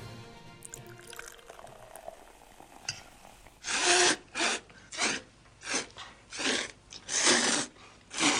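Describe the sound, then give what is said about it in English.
Slurping from the film Tampopo: after a quiet, murmuring start, a series of about seven loud, wet noodle slurps follows in quick rhythm, each a short hissing suck of air and liquid. “We're listening to the slurping from Tampopo.”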